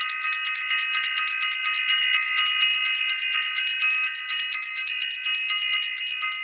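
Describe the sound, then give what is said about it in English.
A bell rung for the self-invested workshop rings continuously for several seconds, a bright, high, metallic tone with a steady, shimmering level and no pauses. No one speaks over it. “I want to ring the bell for self-invested, for the self-invested workshop, and just send so much love out to everyone who has been putting it in self-invested.”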